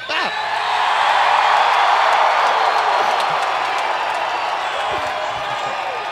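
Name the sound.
crowd cheering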